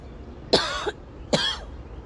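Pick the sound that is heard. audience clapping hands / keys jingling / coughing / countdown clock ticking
coughing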